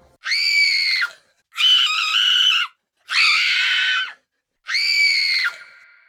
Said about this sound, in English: And then there is screaming.